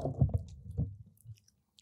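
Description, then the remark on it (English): Soft, wet chewing on an old bandage flavored jelly bean, a few squishy low mouth sounds in quick succession that trail off into quiet, with faint smacking clicks near the end. “Because I don't want to eat this.”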